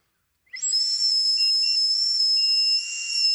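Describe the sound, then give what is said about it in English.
A steady, high-pitched whistling tone starts abruptly and holds for about three seconds, airy and breathy around the edges, as a person blows into a breathalyzer. No one speaks over it. “Yours sounds more like a whistle for some reason.”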